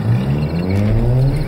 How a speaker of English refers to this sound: The car is luckily a push start, and I'm screeching out of my driveway even as the creature claws the exterior.